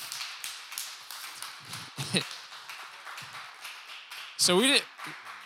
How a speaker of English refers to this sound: can we just give them a round of applause for making all those?